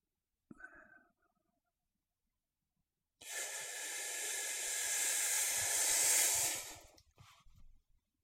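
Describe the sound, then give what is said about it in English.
A long, deep, full inhale drawn in through the nose, loud, lasting several seconds with a steady airy hiss and held at the top, followed by faint rustling and soft breathy sounds. “If you're really feeling the urge to breathe, maybe release any extra air you have and take a deep, full breath in and hold it at the top of the inhale.”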